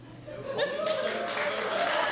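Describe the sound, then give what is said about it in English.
An audience breaks into applause to answer whether they would have chosen the roof. The clapping swells within the first half-second into a dense, steady roar of many hands, with some voices mixed in underneath. “How many of you, by a round of applause, would have chosen roof?”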